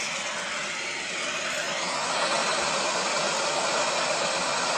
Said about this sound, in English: I'm going to start you off with static.